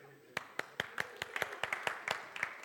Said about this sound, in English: In a church, once you clap, it's sealed.